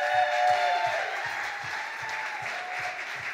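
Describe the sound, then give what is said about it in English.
A crowd at a debate event applauds steadily as Nate Byrne is introduced, a dense wash of clapping with a few raised cheers and whoops rising above it early on, holding at a fairly even loudness throughout. “Make some noise for Nate Byrne!”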